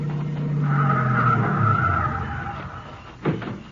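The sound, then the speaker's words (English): A car, one of a couple of cars arriving, roars up and its tires squeal in a long skid that fades out, followed by a short thud as it comes to a stop. Nobody speaks. “Here comes a couple of cars.”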